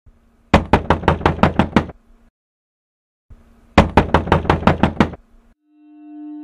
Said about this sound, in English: Late in the evening, on the 4th of August 1909, George Germain was startled by a loud knocking on his door.